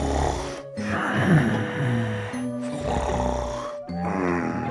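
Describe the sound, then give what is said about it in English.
Loud, rasping snoring of a father, a series of long, rumbling snores separated by brief pauses for breath, with no talking. “The Greta was only my dad, who had a terrible problem with snoring.”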